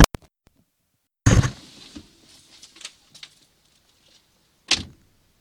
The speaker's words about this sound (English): Shit. Did I lock the door? Let me make sure I lock the damn door. Hold on.